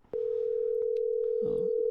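A steady, loud electronic ringback tone of an outgoing phone call starts abruptly and holds unbroken for almost two seconds, with a brief muffled rustle or voice underneath near the end; the call is then answered.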